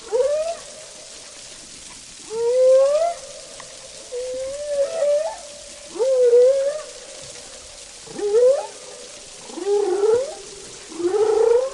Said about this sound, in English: And when we were at Raoul, the whales were always singing. There was just this constant song, but it was all kinds of song.